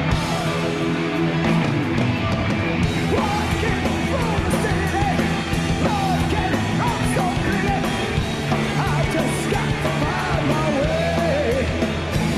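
A large Swedish concert crowd roars continuously, many voices shouting and singing along together in a loud, dense wash of sound that stays steady for the whole stretch without pause.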